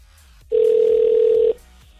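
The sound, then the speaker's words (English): A single steady telephone dial tone hums loudly for about a second as 107.3 Virgin Radio places a call to a contest entrant, then cuts off, leaving only a faint low background. Nobody speaks. “All you got to do now is pick up the phone when we call. Yeah, like right now.”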